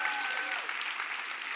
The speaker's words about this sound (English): Currently, our goal is to have 400 unique people serving this month. As of today, we have 367. Can we give ourselves a big round of applause for that?